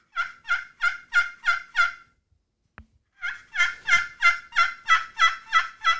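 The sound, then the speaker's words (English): A two-faced turkey pot call, with slate on the bottom and glass on top, played on the glass side, yelping in a steady, rhythmic series of sharp, high-pitched notes: a short burst of about six yelps, a brief pause, then a longer run of about eight. “It's a little bit higher pitch, but that glass, it'll cut through the wind and a little bit better, right, and that kind of stuff.”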